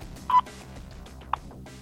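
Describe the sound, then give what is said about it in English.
A U.S. Naval Observatory Master Clock time signal tone over a telephone line, marking Eastern Daylight Time: one short, clear mid-pitched beep, then a second briefer blip a second later, over a steady low hum of line noise. “U.S. Naval Observatory Master Clock, at the tone, Eastern Daylight Time, 6 hours, 1 minute exactly.”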